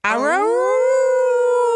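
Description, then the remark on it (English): A single drawn-out dog howl that swoops upward in pitch, then holds a steady, loud, clear tone for nearly two seconds. “She's definitely howling. Okay. It sounded like this.”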